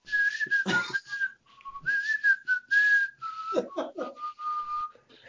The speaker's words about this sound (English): Were you whistling? Was that the That was me. Oh, that was you? Okay. I whistled through my teeth.